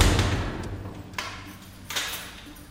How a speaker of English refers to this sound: The door is slammed shut and another day is over.